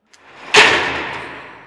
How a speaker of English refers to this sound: That door makes a big noise. He's usually more careful with it. Just eases it shut. Light as a feather. Really? No. Sometimes I think it sounds like the end of the world.